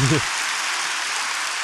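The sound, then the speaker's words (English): Steady, dense applause from a crowd fills the whole stretch at an even level, with a brief voice fragment right at the start before the clapping carries on alone. “Accept your applause, you old fucker.”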